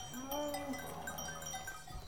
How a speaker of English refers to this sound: A herd of Aubrac cattle were trotting past, being led to pasture. The music of their hooves struck off the road. The white and blonde cows are accompanied by a magnificent coffee-coloured bull, all muscle and testosterone.